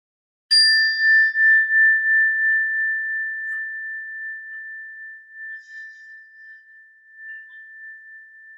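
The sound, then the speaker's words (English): A single meditation bell is struck once to begin a breathing meditation, giving a bright, clear attack that settles into a pure, steady ringing tone. The tone sustains and slowly fades over several seconds, with no voices. “When you hear the sound of the bell, just start by taking a few breaths in and a few breaths out, and then just wait for further instructions.”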